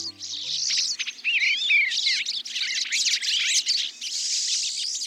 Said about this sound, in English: The sights and sounds of birds visiting a feeder in the backyard or a local park can brighten our days during the darker months of the year.